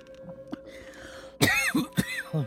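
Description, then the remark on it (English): A woman coughs and clears her throat in a few harsh, raspy bursts over about a second, with faint background hum and small clicks before it. “We all decided coughing in public wasn't cool anymore.”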